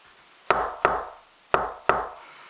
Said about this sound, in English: But ever since I got here, I've been hearing someone knock on my door at random times throughout the day.